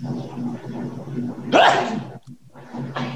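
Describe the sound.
A single sharp, breathy sneeze bursts out loudly midway, brief and explosive, over a low steady background hum with faint murmuring voices around it.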